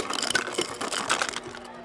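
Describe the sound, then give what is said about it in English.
A smart fridge dispenser grinds and rattles out crushed ice in a continuous crunchy clatter with uneven bursts, moderately loud, with no voices. “Smart Fridge is freaking the fuck out. Deploy ice.”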